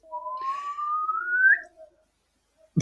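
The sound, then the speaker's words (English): A slide whistle glides steadily upward in one continuous rising tone for about a second and a half, fairly loud, ending abruptly, followed by near silence and a brief sharp noise. “Nice slide whistle.”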